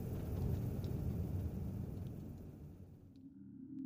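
A winter storm on Svalbard rumbles outside, a deep, steady roar of low wind noise that holds constant throughout, muffled and heavy with no voices.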